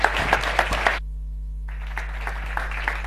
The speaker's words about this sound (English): I'll just you just clap hands for him and cheer him up a bit.